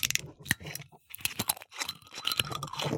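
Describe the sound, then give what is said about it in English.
Metal twist caps crackle and crunch as soju bottles are screwed open, a run of sharp ratcheting clicks and scrapes over a few seconds with no talking. “We both open the bottles at the same time?”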